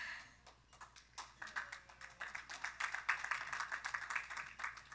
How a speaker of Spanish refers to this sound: See, I love you guys. You clap for all kinds of stuff. Los amo. Ustedes aplauden por todas las cosas.